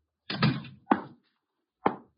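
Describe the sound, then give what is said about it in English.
A door swings and shuts with a rumbling bang, followed by two more solid thuds spaced about a second apart, with no talking. “Shut the door, Chuck. Stay outside.”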